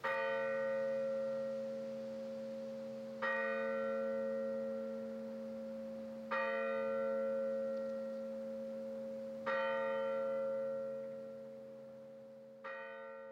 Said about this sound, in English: He got as comfortable as he could in his bed and tried to close his eyes, finding that to be even a little too difficult, when suddenly the clock chimed again.